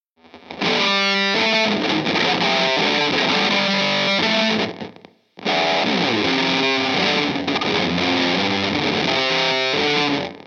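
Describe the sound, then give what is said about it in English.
A Jaguar electric guitar played through a Reuss RSHO2 pedal (version 2) gives a loud, distorted, bright tone. Two sustained passages are split by a short silent break, with no voices. “That high-end Jag sound, that piercing Jag sound, through that, through a twin reverb, at volume is probably head splitting, potentially fatal.”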